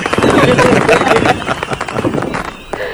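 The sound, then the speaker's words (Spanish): Rapid, continuous crackling of firecracker rockets, a dense stream of sharp pops and bursts that stays loud throughout, then thins slightly toward the end with a brief rising whistle. “no, claro, 100%, tienes toda la razón, solo por eso te vamos a poner unos cohetes.”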